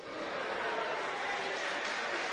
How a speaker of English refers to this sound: I'm happy that you are clapping for that one too.